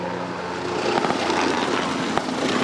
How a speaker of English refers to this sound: In addition, helicopters marked in red played the role of the PLA, moving in to drop soldiers onto the refinery. A chopper from Taiwan's forces followed in hot pursuit.